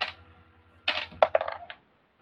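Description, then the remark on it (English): A short clatter of dice tumbling across a hard table, a quick burst of several sharp knocks and rattles, then stillness. No one speaks. “Dice are really fucking good today.”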